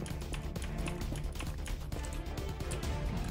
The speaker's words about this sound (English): I hear his keyboard.